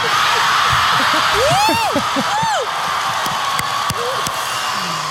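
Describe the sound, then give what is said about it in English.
A crowd at the D23 stage reveal of the Obi-Wan Kenobi show cheers wildly in a loud, sustained roar, with high rising-and-falling whoops and yells piercing through and scattered sharp claps near the end. “The crowd goes wild.”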